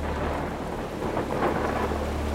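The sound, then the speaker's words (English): Heavy rain and wind from Hurricane Isaac pour down steadily in a dense, continuous wash, with low rumbling thunder swelling beneath it during the storm. No one speaks. “Day one, heavy rain and winds.”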